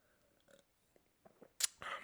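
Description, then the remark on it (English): A quiet sip of beer: faint wet mouth clicks and a swallow, then a short hissing burst and a longer, breathy exhale. No one speaks. “Hang on, I'm just gonna take a beer sip here.”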